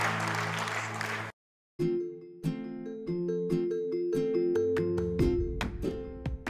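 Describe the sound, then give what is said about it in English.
A short burst of audience applause, given to God at the close of a prayer, rises over sustained organ-like chords, cuts off abruptly, and after a brief silence gives way to rhythmic keyboard music with percussive hits. “Come on, give God a hand.”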